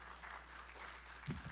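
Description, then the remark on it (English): Soft, scattered applause from a church audience for a woman who has just spoken, sounding thin throughout, with a brief murmur of a voice near the end. “You guys can, and you're welcome to give her a little applause.”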